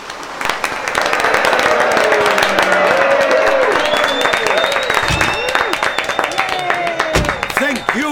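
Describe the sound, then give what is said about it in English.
A noisy crowd gathered at the Bridewell as a man is moved by the Gardaí murmurs and shouts over one another, with scattered clapping and bursts of raised voices in a dense, continuous din. “where a crowd had gathered and made moving him by the Gardaí.”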